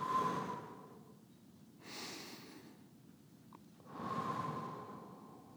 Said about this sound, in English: The first thing, though, that I want you to do is to just think about your breathing. Take a second, just focus on your breathing. Inhale, exhale.